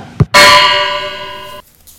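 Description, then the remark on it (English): A soft knock, then a loud metallic clang on the empty, hollow tin chest of a rusted figure made by a tinsmith, ringing on with a bright, sustained tone for over a second before cutting off. No voices. “Just bang on my chest if you think I'm perfect.”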